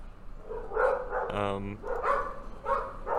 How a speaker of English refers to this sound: Let's talk about the dogs. How many dogs are there? Two. Two? They're in a barking contest? They're barking to people on the street.